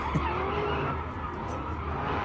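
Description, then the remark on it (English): Car tires skid and squeal over a steady roar of revving engines, a continuous, fairly loud street-racing din lasting a couple of seconds with no one speaking. “You see these videos all over the internet now. Yeah, this is a thing. I mean, this is definitely a thing. But just cars, just like...”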